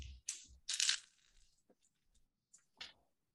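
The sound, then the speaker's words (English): Five dice clatter and tumble across a hard tabletop in a quick burst of sharp clicks, then a few scattered taps as they settle, with one final rattle near the end. “I'm going to roll that again. I'm going to roll luck.”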